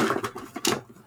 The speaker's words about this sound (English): Pedro just opened a drawer with colored pencils and he pulled one out